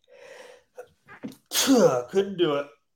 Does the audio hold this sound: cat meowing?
no